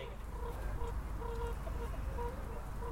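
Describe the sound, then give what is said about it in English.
Hens cluck in a steady series of short, soft calls in a garden, over a low, rumbling outdoor background, with no talking. “We've seen the hens and so on.”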